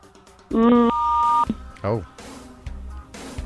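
Telephone keypad tones beep loudly: a short electronic tone runs straight into a longer, steady one, followed by a brief vocal sound and quiet background noise.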